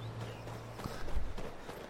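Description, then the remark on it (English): Horse hooves clip-clop a few times on hard ground, irregular and fairly soft, as horses are fetched for riding back to Whiterun, over a steady low background hum. “We'll run down, grab the horses,”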